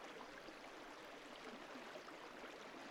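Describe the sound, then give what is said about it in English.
A small river, the Whitewater River within Mourne Park, flows steadily at night, a continuous rushing, bubbling wash of water at an even level throughout, with no voices or other sounds. “we're on the banks of the Whitewater River within Mourne Park.”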